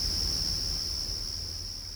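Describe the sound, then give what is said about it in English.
A steady, high-pitched drone of night insects chirping continuously throughout, moderately loud and unbroken, over a soft low rumble with no voices. “She listens to the sounds of the night. Frogs, insects, birds all communicating.”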